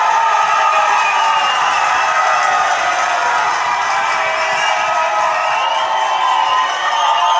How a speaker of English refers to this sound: Yeah, I only hit the button once. Really? That's yeah, that was a long, long cheer. Yeah, they must really love us.